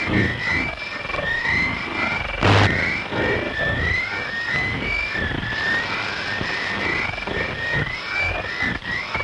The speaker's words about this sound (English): Some people reported hearing low inaudible voices over the transmission, and it created what can only be called a whale-like sonorous pitch.